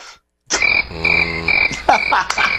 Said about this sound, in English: Yes. Yes. I love the crickets.